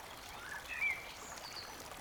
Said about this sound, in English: You hear water slowly flowing down a small creek nearby.